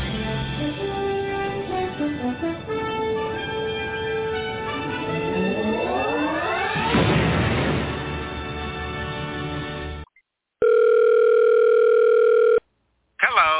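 After a sweeping, rising electronic drone, a telephone rings loudly in two long, steady electronic bursts separated by a short silence, before an answering machine message.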